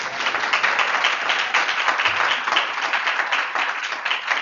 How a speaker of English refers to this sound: And you can tell my background, I'm about to say the right Reverend, but the Reverend Dr. Jamal Harrison Bryant. Applause again.